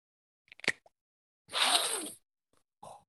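A few quick plastic clicks, then a single airy hiss of a peach spray bottle puff lasting under a second, followed by a brief softer rustle. No one speaks.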